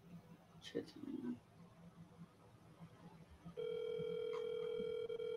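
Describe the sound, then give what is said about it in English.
A few brief electronic tones as a phone call to a man is placed, then a loud, steady telephone ringing tone begins and holds unbroken to the end as the line rings out. “Okay, so let me call him up.”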